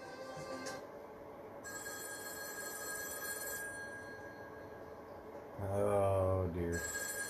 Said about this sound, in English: The red phone's ringing.